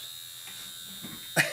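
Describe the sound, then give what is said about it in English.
A vibrating electric eye massager gives off a steady, high-pitched mechanical buzz that holds an even level throughout, ending with a brief sharp rattle or handling noise. “So it basically just vibrates the shit out of your face?”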